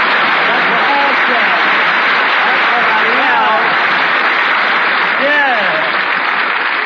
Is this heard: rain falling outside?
no